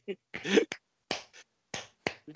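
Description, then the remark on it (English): A handful of sharp, crisp hand claps in an uneven rhythm, each a quick bright smack with short gaps between, with no talking. “Don't clap.”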